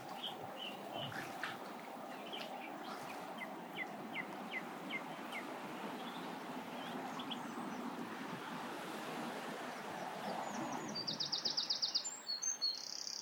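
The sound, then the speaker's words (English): Geese give short, scattered calls over a steady rushing wash of water and wind, ending with a quick rhythmic run of high, sharp calls. “Right, geese. See you later. Behave yourselves. Try not to argue.”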